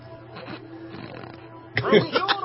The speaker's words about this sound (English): Nice snort there.